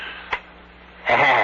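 A single sharp, crisp tick of a clock stands out against a quiet background, followed a moment later by a louder, sustained rush of sound.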